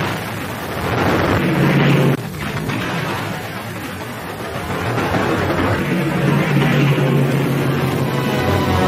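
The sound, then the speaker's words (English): A roaring, rumbling blast of noise with booming explosive bursts as a Liberator bomber is hit in Pacific Island warfare, a sharp break near two seconds, then a sustained loud roar as the plane, one wing shattered, plummets groundward, with no one speaking. “With one wing completely shattered, the plane plummets groundward.”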